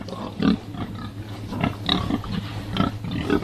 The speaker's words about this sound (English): who want to see pigs happily rooting around in the hay rather than stuck in concrete cages.